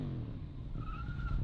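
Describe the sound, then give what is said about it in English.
A motorcycle engine revs loudly, a dense low rumble that climbs into a rising, whining pitch partway through. No one speaks. “Is that what your new bike's going to sound like?”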